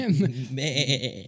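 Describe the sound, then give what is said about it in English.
A person imitates a goat's bleat: one loud, wavering, nasal cry lasting just over a second, trembling in pitch, with no other sounds. “More like they're screaming like this.”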